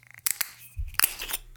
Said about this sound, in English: But now on to a tasting. Let's go ahead and open this bottle up. Screw cap.